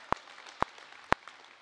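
Four sharp hand claps land in a slow, perfectly even rhythm, about half a second apart, over a faint low hiss with no voices.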